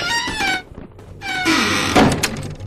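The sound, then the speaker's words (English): The door of a large blue box creaks on its hinges in two drawn-out squeals, then swings shut with a single solid thunk. No one speaks. “It's a large blue box. It's got a door. You think we hide? Okay, we hide.”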